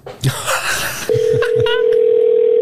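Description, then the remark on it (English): A steady, continuous telephone dial tone hums loudly for about the last second and a half, preceded by handling noise, low thumps and a few short electronic beeps, as a phone call is placed to Jet's Pizza. “I call them at least twice a week. My phone's not ringing.”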